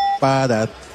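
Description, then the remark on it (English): A quiz buzzer sound effect, played as a buzzer option for the 10 Questions segment on 98.5 The Sports Hub: a short, steady high tone gives way to a loud, harsh buzz rich in overtones that lasts about half a second, with a slight change in pitch midway. “what are our buzzer options?”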